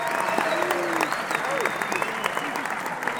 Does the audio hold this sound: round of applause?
yes